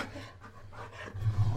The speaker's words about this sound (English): the other dog, isn't as loud or tall. But he has a deeper... Deeper bark.